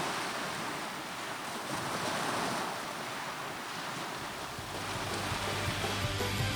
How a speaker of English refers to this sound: Let me just play a little something that I've listened to for the last week. This gentle sound of the waves coming in. Everybody enjoy it.